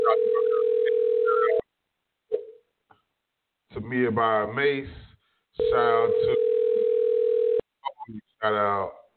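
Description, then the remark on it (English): Two long, steady ringback tones of an outgoing phone call, each lasting about two seconds with a pause between, loud, while a person talks in the gaps. “He didn't answer his phone.”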